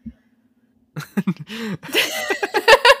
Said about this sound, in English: Maybe if I got sick. Quick, cough on me. Have some plague.